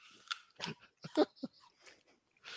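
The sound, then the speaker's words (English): Wet crunching as someone bites into and chews a crisp apple, a series of irregular crunchy bursts over a couple of seconds with no talking. “Better eat the apple fast. It's starting to turn brown.”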